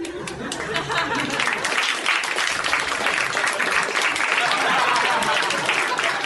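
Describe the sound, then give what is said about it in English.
A steady burst of applause, many dense overlapping claps at an even loudness for about six seconds, with a faint murmur of voices underneath. “He applauded himself.”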